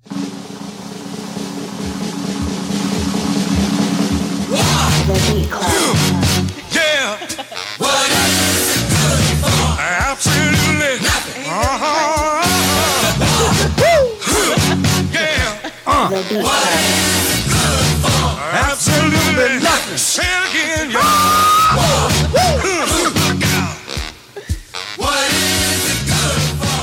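A loud recorded soul song opens with a few seconds of held low tones, then a full band bursts in with a driving beat and powerful lead vocals that continue to the end.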